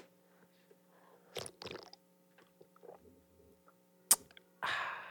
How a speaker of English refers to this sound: Okay, here goes the first sip.